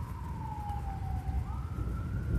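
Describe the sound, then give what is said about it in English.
An emergency siren wails over a steady low rumble of outdoor ambience with thunder and rain, its single tone slowly sliding down and then rising again, with no voices present. “Sirens and thunder and rain.”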